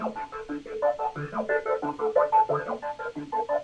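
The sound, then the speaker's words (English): A synthesizer keyboard plays a repeating ostinato, a steady run of bright, buzzy mid-range notes that cycles over and over at an even pulse, with no one talking. “Okay, ostinato.”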